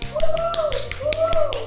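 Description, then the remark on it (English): A woman lets out a drawn-out "woohoo" cheer, followed by a near-identical repeat like an echo, with scattered light tapping clicks underneath. “You called it, and if you did, if you just now, you heard that little sound and the echo in the back, you know, you called it.”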